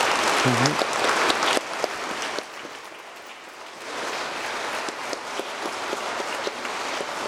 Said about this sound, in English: Now, if you would join me with a round of applause for this, the class of 2022.